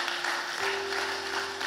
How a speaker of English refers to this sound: Hey, can we just clap our hands for every person today that's taken a step toward Jesus.